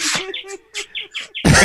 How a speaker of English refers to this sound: Even a bird liked it. That bird won't stop, can't stop.